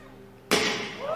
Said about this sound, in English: So he throws a steel ball at it, and it breaks the glass. It's bulletproof glass. Quote, unquote, bulletproof glass.